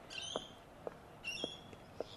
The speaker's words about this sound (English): As we close, can you hear? This is just a suburban street I live in, and you can hear the bird activity.